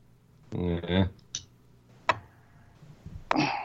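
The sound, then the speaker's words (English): A few sparse, sharp clicks of a computer keyboard being tapped, fairly loud, as someone types a message in Skype, with a brief murmur of voice near the start. “I can hear a keyboard tapping.”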